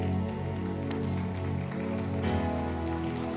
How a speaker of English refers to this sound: Keep coming. Keep clapping. Lift that hand to the Lord and give me this one.